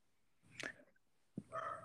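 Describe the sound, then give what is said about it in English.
A dog named Beatrix lets out one short, soft bark, then a brief, higher whining yelp about a second later, both fairly quiet with no talking. “A single bark from Beatrix.”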